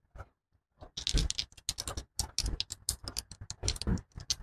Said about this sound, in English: Ah! I dropped a dice already, so that's one.